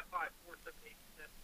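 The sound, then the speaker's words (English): Faint, tinny voices from a radio broadcast drift back through an open phone line from a caller in Houston who does not answer, muffled, with short indistinct bursts of speech over a quiet hiss. “It sounded like he was listening to us in the background.”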